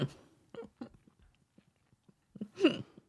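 Crunchy chewing of a walnut snack: a few sharp, crackly crunches with faint clicks and pauses between them, ending in one louder, longer crunching burst. No one speaks.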